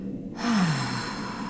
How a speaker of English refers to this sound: And then you want to hold that breath for several seconds. And then you want to slowly exhale. But you want to exhale out of your mouth.